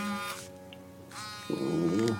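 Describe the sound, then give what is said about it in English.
A cell phone at a house in Winona vibrates with a steady, rattling electric buzz that swells and fades in a few pulses, moderately loud, with no one speaking, as a prepaid call comes in from Parchman Prison. “cell phone buzzed.”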